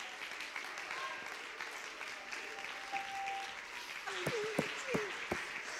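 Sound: audience clapping hands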